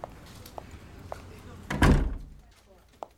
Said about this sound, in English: Hold on. Close the door.